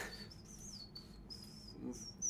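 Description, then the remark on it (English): A thin, high whistle made by a person sucking air inward, wavering in short bird-like phrases separated by brief breaths, fairly quiet over a soft background hiss. “I'm definitely better at whistling as I breathe inwards than outwards. I just sound like a bird.”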